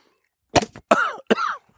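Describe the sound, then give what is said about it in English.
Three harsh coughs in quick succession, each a sharp burst trailing into a raspy, throaty tail, with nothing else around them, from a person doing a cold draw on a Diesel Crucible cigar. “Coughing on the cold draw there, huh?”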